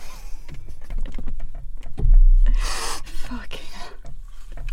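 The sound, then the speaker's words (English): Someone crunches into an apple, with a loud, crisp bite in the middle followed by wet chewing and small crackling clicks, against a low rumbling background. “You can't eat an apple.”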